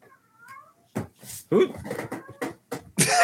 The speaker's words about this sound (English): Is the cat broken again? Hey, who let the cat out? We don't have a cat.